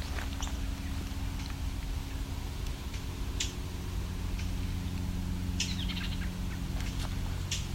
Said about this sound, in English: That's the eastern towhee, actually. It's doing the ticking. There's two of them.